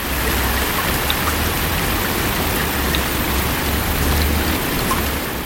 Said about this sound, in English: He was quite pleased when he looked out the window and saw large drops of rain splashing in the pond.